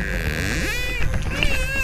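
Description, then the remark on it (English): High-pitched dolphin squeaks and whistles from the depths below, a few wavering tonal calls that rise and fall in pitch, heard over a steady low underwater rumble. “I hear high squeaking from the depths below.”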